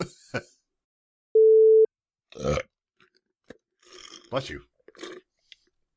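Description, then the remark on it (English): A short, rough belch bursts out just after a steady electronic beep, followed by a few scattered words from other voices. “You don't say that for belches.”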